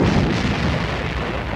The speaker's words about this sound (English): An exceptionally violent explosion shook the passage, drowning him out.